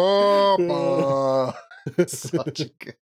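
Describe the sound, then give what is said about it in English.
A voice imitates an accordion through breathing, with two long, reedy sustained tones, like a breath drawn in and pushed out, followed by a brief burst of animated talking. “And I start breathing and it sounds like a harmonica. Oh no, it's the accordion. Every breath.”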